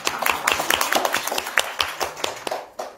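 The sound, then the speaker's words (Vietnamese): A crowd applauds, with many hands clapping in a dense, steady patter of sharp slaps that fades slightly toward the end. “Cảm ơn anh nha, một tràng pháo tay ạ.”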